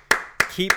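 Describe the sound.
Three sharp hand claps at an even, unhurried pace, with a short voiced sound slipping in between the second and third.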